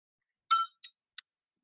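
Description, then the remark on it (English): A small bell is struck three times in uneven succession, each bright metallic ding fading quickly, the first ringing slightly longer; quiet, with silence around it. “Just like the sound of the bell.”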